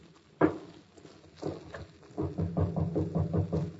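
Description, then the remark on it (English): A couple of heavy, separate thuds, then a quick run of about eight knocks on a wooden door at the end of a dark passageway, fairly loud, with no voices. “Just go up to the door, and I'll knock.”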